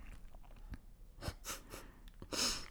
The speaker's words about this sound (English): Do you like how I incorporated my sniff to the Go Fight Win? Just about ridiculous. Blew a snot rocket.